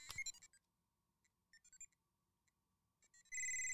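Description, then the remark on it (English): An electronic R2-D2 dice toy for a game, set off by pressing its head, chirps out a quick burst of high, warbling beeps, then a scattered series of short electronic blips, ending in a loud, steady two-tone electronic tone as it comes up with a number 4. “can I show you the dice for the game? So yeah, the dice is R2D. I did press it before. So R2D2, you press his head.”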